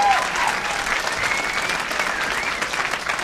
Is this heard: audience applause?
yes